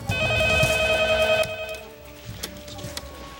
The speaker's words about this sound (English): He's got, like, a cordless phone at his house, and people are, like, calling him. Can never make it to that phone on time.